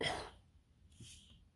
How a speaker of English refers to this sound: Apologies for the cough. That was unexpected.